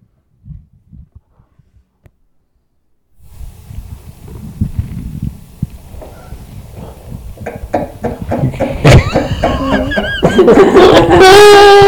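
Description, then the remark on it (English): An amplified heartbeat gives a few low, muffled thumps, then after a short silence turns into loud, crackling, distorted rumbling with rising high squeals near the end. “Do you guys want to hear my heartbeat?”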